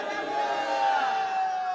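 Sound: audience shouting hallelujah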